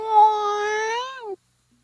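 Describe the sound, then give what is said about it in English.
A person imitates a cat's meow with one drawn-out, steady voiced tone that bends slightly before dropping off abruptly, clear, followed by silence. “We're listening for meow.”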